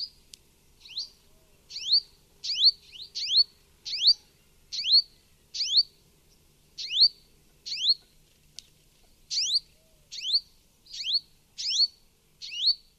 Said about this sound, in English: This next one is a purple sunbird. In this recording, made at a desert oasis in Oman, you can hear at least two purple sunbirds calling.